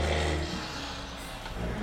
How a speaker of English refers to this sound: What about the trucks? They're building new construction in the area.